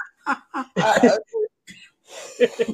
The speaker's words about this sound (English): I woke the baby up. Grandpa cough.